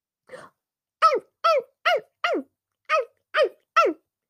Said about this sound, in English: And I looked and the box started moving and I was startled. What could it be? And I opened it up and there it was, a little puppy.